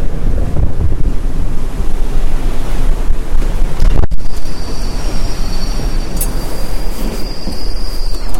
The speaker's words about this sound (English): I don't know if you can really hear it, but there's very kind of rough seas smashing inside of the ship, and spray blowing up. I don't know if you can really hear all that. Quite dramatic and quite exciting, really.